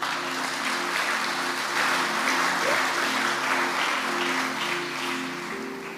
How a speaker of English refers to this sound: I thought when I said you'll be clapping, but you didn't clap. Clap.